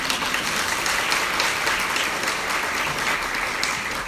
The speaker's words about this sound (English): Can I just say, on behalf of these lovely people, welcome to early childhood education. Welcome to early childhood. And give them a clap.